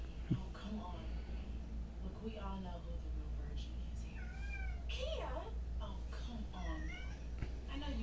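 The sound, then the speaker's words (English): A female cat meows repeatedly in drawn-out, wavering cries, clear, over a steady low hum with a faint voice in the background. “If you hear my cat, it's because she's terrified of what's going to happen next in this movie.”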